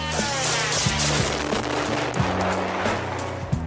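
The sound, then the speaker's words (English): Scattered gunshots crack out every half second or so as police shoot at a suicide drone, of a kind Iran is accused of selling to Russia; several sharp bursts over a steady low engine buzz and a noisy outdoor wash; no one speaks. “Here, police shoot one out the sky.”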